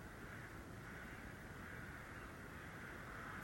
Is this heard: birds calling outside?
yes